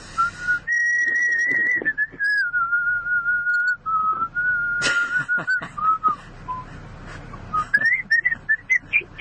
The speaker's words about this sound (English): Like, yeah, there's some guy who you thought was, like, you know, sleeping on a chair, but with his hat covering his face. But if he starts whistling once the showdown starts.